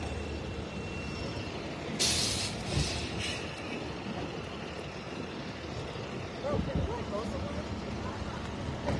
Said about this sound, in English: Here comes the tow truck.